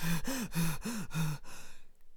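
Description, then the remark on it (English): A voice imitates a dog lying at the side of the road wheezing and panting: five quick, rhythmic, breathy huffs with a strained, whiny tone, fairly loud, trailing off into softer breathing. “Now, Donkey had not gone very far when he met a dog lying at the side of the road, wheezing and panting.”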